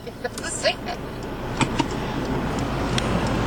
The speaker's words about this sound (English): Well, there's nothing coming, unless you're gonna. Unless you count this car coming.